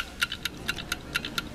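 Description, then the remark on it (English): A 60-second game countdown clock ticks steadily, with about seven crisp, evenly spaced ticks alternating slightly in pitch, clear against a quiet background, with no one speaking. “We'll put 60 seconds on the clock, and here we go.”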